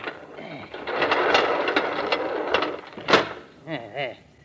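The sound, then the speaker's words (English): A long rolling, scraping rumble of heavy garage doors being pulled shut, ending in a sharp bang, followed by two brief creaky squeaks. “Come inside and help me close these doors.”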